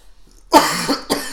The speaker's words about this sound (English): Oh god, are you okay? Just, yeah. No, coughed into the microphone.